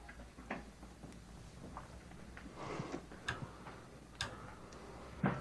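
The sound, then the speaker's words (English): Quiet, irregular footsteps at the end of a film clip tap and thud at an unhurried pace over a low background hiss, with a slightly heavier step right at the end and no voices. “Yeah, there's just some footsteps, cool.”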